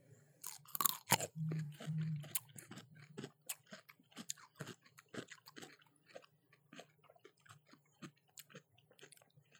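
Loud, wet crunching of a juicy whole kosher, barrel-fermented, brine-soaked pickle being bitten and chewed, with a sharp first bite followed by a steady series of juicy crunches that gradually soften, with no talking.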